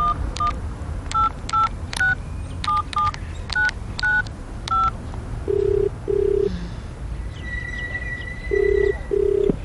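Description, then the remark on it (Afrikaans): A quick run of about a dozen beeping keypad tones as a number is dialed, then a low ringing tone sounding in paired bursts twice, with no one speaking. “Kom ek bel net so lank vir Tannie Christel en dan hoor ek of sy vir ons kan kom oplaai.”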